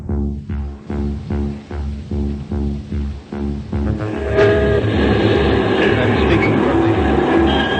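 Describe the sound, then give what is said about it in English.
Warning bells ringing in New York City, heard from the roof of the Broadcasting Building, to warn people to evacuate as Martians approach: steady, evenly spaced strikes repeat for several seconds, then swell into a dense, continuous clangour of overlapping ringing tones, loud and unbroken. “The bells you hear are ringing to warn the people to evacuate the city as Martians approach.”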